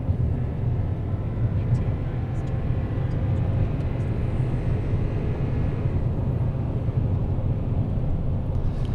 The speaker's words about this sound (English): All right, so we'll pass that guy. You hear that roar of the engine?